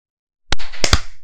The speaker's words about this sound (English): Let's clap at, so I have to like peer over my mic. Let's clap at 55.